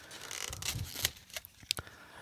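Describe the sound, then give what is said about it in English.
Crisp crinkling of checkered paper as takeout chicken is unwrapped, with a scatter of sharp rustles and crackles over about two seconds and no talking. “Oh, it's got that nice checkered paper on it.”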